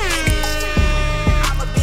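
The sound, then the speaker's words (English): A loud, blaring air horn sound effect with bright, brassy harmonics, blasting in a rapid rhythmic series of pulses with thumping hits underneath, filling the whole moment with no talking. “Let me get some air horns.”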